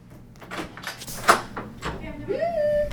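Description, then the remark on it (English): A door opens as a person is let back into the room, with a few soft clunks and rustles, followed by a rising, drawn-out creak near the end; moderately loud, with no clear talking. “Door sound just...”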